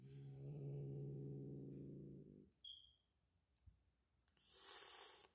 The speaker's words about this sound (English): What the fuck are you growling at, you white bitch? Shut up, you white bitch.